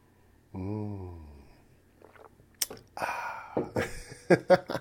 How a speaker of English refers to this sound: One moment, I'm going to take a sip of this water.